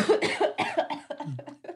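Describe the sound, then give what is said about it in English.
A woman coughs into her hand in a rapid run of short, muffled bursts, fairly loud, with no talking. “She's coughing on something. My hand. She's coughing on her hand.”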